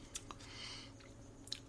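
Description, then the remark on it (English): Someone chugs a drink, with a few quiet, wet swallowing clicks spaced over a second or two and no talking. “I'm basically chugging this thing now.”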